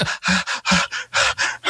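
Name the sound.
imitated heavy breathing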